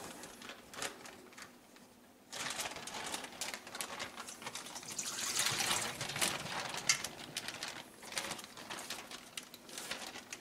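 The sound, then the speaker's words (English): After a couple of seconds of near quiet, pickle juice from chicken soaked in it for 48 hours pours and splashes steadily into a colander, a dense, hissing, spattering rush that swells slightly midway and continues to the end. No one speaks. “So now we're going to pour this in the colander.”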